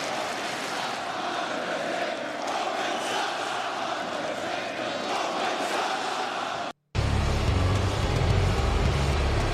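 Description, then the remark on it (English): A large wrestling arena crowd booing Hogan loudly as he joins the NWO at the start of Raw after WrestleMania, in a sustained, roaring wall of noise, broken by a brief dropout before the din returns even louder and heavier. “The sustained just hate from that crowd.”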